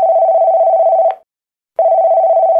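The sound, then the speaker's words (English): A telephone rings during a call attempt in a film scene as Elliot tries to call his sister Gertie: a steady, loud, slightly warbling tone sounds for about a second, pauses briefly, then starts again, with no voices. “Elliot tries to call his sister Gertie.”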